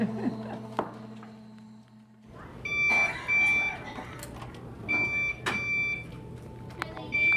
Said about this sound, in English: What's that beeping noise, do you know?